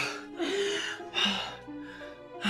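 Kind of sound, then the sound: human body sound, gasp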